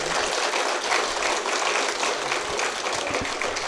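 A crowd claps steadily throughout at the Save Our Old Forests launch, a dense, even wash of many hands applauding at a fairly loud level with no voices rising above it.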